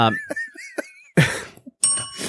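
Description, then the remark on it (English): A small bell, like a bicycle bell, rung as a segment marker, rings out brightly a couple of times in quick succession, fairly loud, with short pauses between the rings and no one talking. “If you can't tell, we just recently added the bell.”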